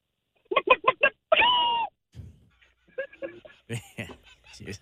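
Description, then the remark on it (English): A person imitates a chicken: four quick, clipped clucks followed by a longer, strained squawk, then a few softer vocal sounds trail off afterward. “I actually can do a pretty good chicken, so I'm going to do that.”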